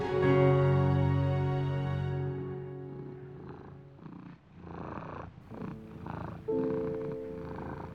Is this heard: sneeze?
no